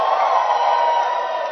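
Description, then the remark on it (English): A crowd of people shouting and cheering to the Lord together in one sustained, steady roar of many voices, loud and unbroken, with no single voice standing out. “Give the Lord a shout.”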